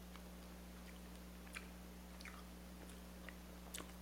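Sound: chewing candy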